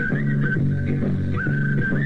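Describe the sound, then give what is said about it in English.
A bright pennywhistle melody bounces along over a steady, repeating bass-and-guitar jive rhythm, loud and upfront with no voices: a revival recording of South African-style whistling flute jive. “Some of that town, South African sort of, what do they call it, the Whistling Flute Jive or something.”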